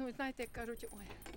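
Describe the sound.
Keys jangle and clink with bright metallic rattles as a woman searches for the cellar key and fumbles for the lock, her voice rising and falling as she talks throughout the short moment.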